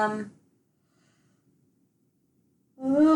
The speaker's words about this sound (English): That nice yawn going on. I'm tired.